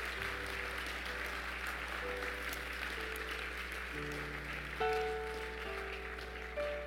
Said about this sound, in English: I want you to give him a hand clap of praise that'll give the devil a headache.